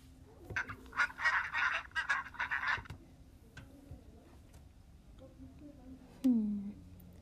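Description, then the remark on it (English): A cartoonish video game duck character, Mr. Duck, quacks in a rapid, chattering burst lasting a couple of seconds, followed by quieter pauses and one short, sliding squawk near the end. “Shut up, Duck.”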